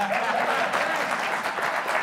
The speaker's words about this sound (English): That's just where you clap.